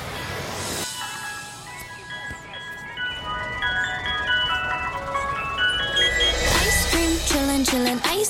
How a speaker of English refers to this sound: But that ice cream truck, it's the real deal.